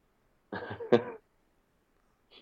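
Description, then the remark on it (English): A harsh cough burst: two or three quick rough hacks followed by a sharp louder one, then silence with a faint breathy sound at the end. “Oh, you were peeking when you were coughing.”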